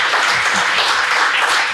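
A live audience bursts into a round of applause, dense steady clapping filling the whole moment at a loud, even level with no individual claps standing out.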